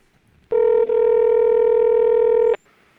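A loud, steady telephone tone sounds for about two seconds as a phone call is placed, with a brief flicker near its start, then cuts off abruptly, leaving quiet background with no talking.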